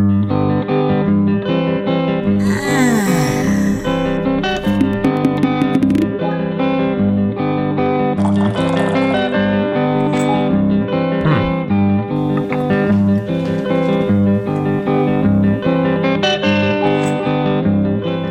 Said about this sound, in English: You're hearing one of the fanciful conceptual walkthrough videos produced for Google Glass.